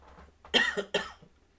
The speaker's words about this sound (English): He's got the cough over there. I do have the cough. I'm gonna try to mute my bad coughs, but my little coughs I'll leave in here.